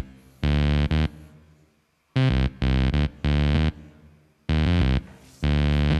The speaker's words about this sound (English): My lovely Softec MIG 50 amp, and nothing much more. So reamping enabled. You send it through an amp, okay? Through an amp, mm-hmm. Synth bass through an amp. Cool as well.